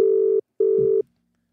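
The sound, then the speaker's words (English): An outgoing call's ringback tone while calling a new trainer: two steady, mid-pitched buzzing bursts in quick succession, a brief gap between them, then silence. No one speaks. “Right, I'll give him a fucking bell now.”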